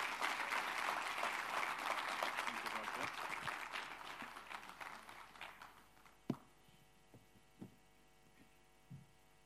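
An audience claps in a dense, sustained round of applause that gradually thins and fades out after about six seconds, leaving a steady low hum with a few isolated thumps.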